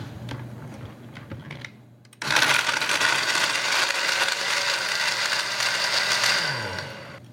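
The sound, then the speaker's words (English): After a couple of seconds of soft clicks and low hum, a blender kicks on abruptly into a loud, steady whirring roar, its motor tone dipping slightly near the end, whipping a drink of meringue powder, powdered sugar and a splash of vanilla. No one speaks. “And when I whip this up, the meringue powder is going to give it this wonderful frothy texture.”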